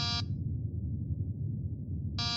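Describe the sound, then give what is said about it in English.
A door buzzer on a ship sounds in two short, harsh electronic bursts as someone rings to get in, one at the start and one at the end, separated by a low steady rumble with no talking. “Why are you ringing the bell to get in?”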